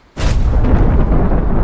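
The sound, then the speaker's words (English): A door bursts open with a sudden loud crash after a moment of silence, followed by a heavy, rumbling roar that holds steady to the end. No voices. “The door suddenly burst open and on instinct I rolled into a fighting stance.”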